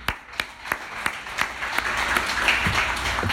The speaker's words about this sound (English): Amen. Amen. Can we give him a clap again?